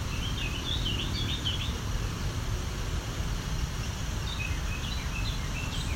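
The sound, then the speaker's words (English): A Carolina wren, most likely a male, sings softly while practicing its song, running through quiet, jumbled warbling phrases, half-buried under a steady low rumble of background noise. “This is a lot quieter than a Carolina wren usually is.”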